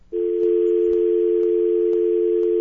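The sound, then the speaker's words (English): A steady telephone dial tone hums at a constant pitch for a couple of seconds, loud and unbroken, with faint regular ticks underneath and no voices. “Thank you for the dial tone.”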